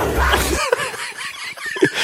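A big-cat screech sound effect: shrill, wavering cries bending up and down in pitch, loud, over a low rumble at the start, lasting about two seconds.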